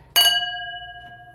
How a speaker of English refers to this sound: Are we ready? Yeah. You want to cheers? Cheers. Cheers.